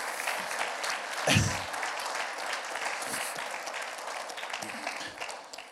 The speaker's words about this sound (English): Thank you for that clap.